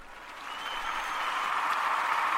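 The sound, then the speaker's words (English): An audience gives a clap offering to the Lord in a dense, steady wash of clapping that swells slightly louder over a couple of seconds, with no voices standing out. “Let's give the Lord a clap offering one more time on this note.”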